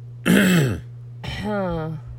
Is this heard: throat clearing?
yes